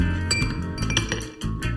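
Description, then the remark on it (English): A drink is poured into a glass, with bright glassy clinks and taps ringing out over a steady background, no talking. “Pour.”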